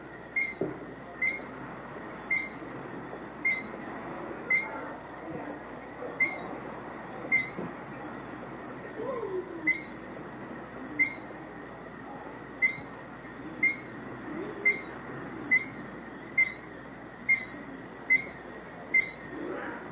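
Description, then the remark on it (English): A bird calls at sundown with short, sharp single notes repeated steadily about once a second, standing out clearly above a constant low rumbling background noise. “It's a beautiful bird. I'll turn up the gain here. You can hear him again.”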